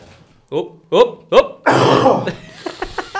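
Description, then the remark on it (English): A loud coughing fit: three sharp, throaty hacks in quick succession, then a longer raspy, wheezing burst, trailing off into several smaller coughs. “We're both having coughing fits.”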